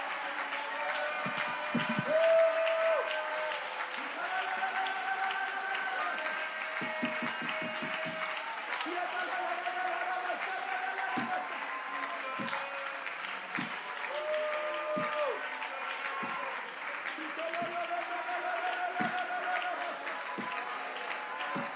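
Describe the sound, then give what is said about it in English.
An audience applauds in worship, clapping as they proclaim that the Lord gives and the Lord takes away, steadily for over twenty seconds: a dense wash of many hands clapping at a fairly even loudness, with a warm sustained tone, likely music or voices, running underneath. “Is there anybody that can clap and say, the Lord gives, the Lord takes away?”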